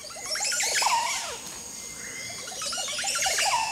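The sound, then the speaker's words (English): A male Montezuma Oropendola, perched beside its nest, sings its gurgling song on a winter morning in a forest clearing with Mayan ruins in the Central American tropics: two bursts of bubbly, liquid notes with sliding whistles, separated by a brief lull, fairly loud and clear with no voices. “Perched beside its nest is the author of those gurgling tones, a Montezuma Oropendola.”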